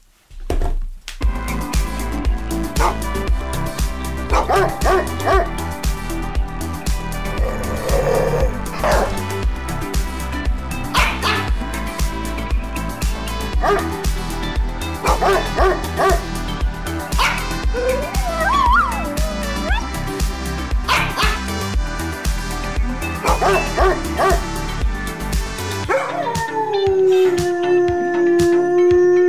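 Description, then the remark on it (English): A female dog whimpers and howls almost continuously with sharp barks mixed in, high whining tones rising and falling, fairly loud, with no one speaking. “Just got to pop out and deal with the dog thing.”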